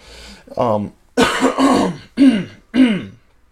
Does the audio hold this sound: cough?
yes